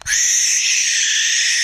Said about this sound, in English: That was a barn owl. They make that kind of scream when they're being caught by something.